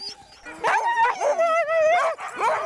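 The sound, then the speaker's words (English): Several excited sled dogs bark, yip and whine in quick overlapping bursts, their high, wavering cries loud throughout, getting fired up as harnesses are readied. “You can see in the dogs now, they're starting to get fired up a little bit.”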